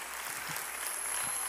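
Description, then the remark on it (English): An audience claps their hands together, a dense, steady wash of many overlapping claps filling the whole moment at an even loudness, with no voices standing out. “Clap your hands to the Lord in this house.”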